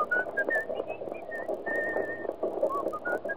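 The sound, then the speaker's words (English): Someone whistles a lilting tune, a string of clear pitched notes rising and falling with short gaps, and one longer held note in the middle, with a faint murmur underneath. “What's that tune you're whistling?”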